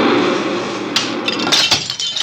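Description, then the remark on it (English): A passing subway train makes a steady, loud rumbling roar and rattles and breaks things, with sharp crashes of glass and objects breaking and clattering partway through, several quick impacts in a row. “Relax, relax. It's only the subway.”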